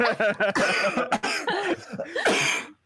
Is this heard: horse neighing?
no